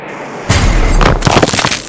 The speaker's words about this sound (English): the first copper core fragment missile crashed into the turret